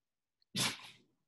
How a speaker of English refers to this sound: Is he sneezing in the background? Yes, he's sneezing in the background. He's rolling on his back. Sneezing. I love it. It's okay. He's a cutie.